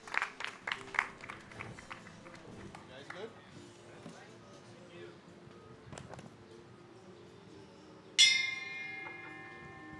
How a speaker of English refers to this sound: Please give him a round of applause as he kicks off the forum.